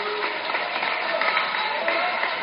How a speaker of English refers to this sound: Also playing his final game, coming out for an applause, Brennan Avery.